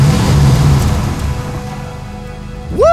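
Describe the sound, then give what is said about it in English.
A heavy truck engine roars loud as the truck comes roaring up, its low rumble easing off slightly over a few seconds, before a sharp rising whoosh cuts in at the very end. “But before he could aim for the tires, another truck came roaring up behind him and he dove out of the way.”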